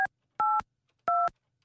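Three short dual-pitched telephone keypad tones, evenly spaced and fairly loud, each beep a clean steady chord with silence in between, as someone dials a phone to call a station's program director.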